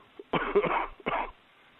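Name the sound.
coughing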